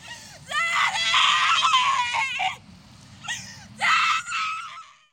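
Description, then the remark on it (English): A woman, the daughter of executed prisoner Marion Wilson, screams in distress on hearing her father's execution is complete: a long, loud anguished wail, then two shorter cries after a brief pause, over a low rumble of background noise. “His daughter screamed when she heard the execution of her father was complete.”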